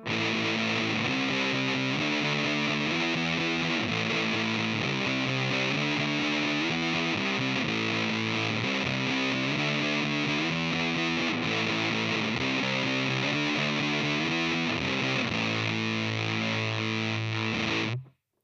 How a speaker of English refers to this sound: using the Big Muff to slam the input of the Rat, to tighten everything up, and add a little bit more bite to the distortion